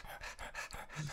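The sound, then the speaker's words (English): A person imitates a dog panting for the dog-like character Shark Puppy, whose big tongue flops out: quick, rhythmic breathy huffs, about six in a row, steady in loudness, with no talking. “And this big dog tongue flops out of Shark Puppy's mouth.”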